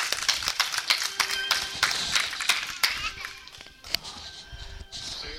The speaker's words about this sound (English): In Jesus' name, give God a hand clap of praise up in here, up in here.